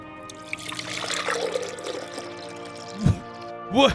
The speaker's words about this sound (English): I'm pouring cereal. No, you're pouring milk, bro. Milk. Yeah, I always pour my milk first, then the cereal.